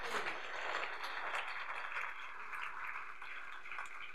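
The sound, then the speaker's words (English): Thin, half-hearted applause from an audience during a gospel sermon, a steady patter of scattered claps that stays quiet throughout, with no one speaking. “Your clapping is suffering from anemia.”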